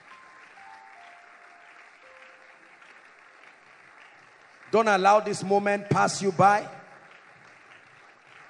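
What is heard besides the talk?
audience clapping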